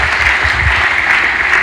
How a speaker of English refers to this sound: Clap your hands. Utukoze bulonji. Done as well. Mukongere mukubire mungalo Yesu. Let us clap for Jesus.